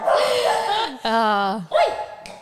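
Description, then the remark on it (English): A dog lets out three or four whiny, yelping barks with drawn-out falling pitches, fairly loud, coming in quick bursts separated by brief gaps. “Bloody dogs and text messages.”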